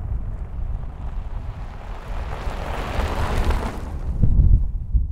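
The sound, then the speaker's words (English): A distant whir of passing cars heard from a gravel road beside a grassy ditch: a steady low rumble of wind-like noise, with a broad whoosh swelling and fading midway as a vehicle goes by, and a deeper thump of rumble near the end. No voices. “Just a grassy ditch, a gravel road, and the distant whir of passing cars.”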